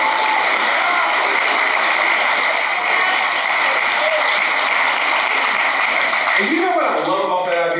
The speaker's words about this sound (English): And you know, go ahead, y'all can clap for that. That's good.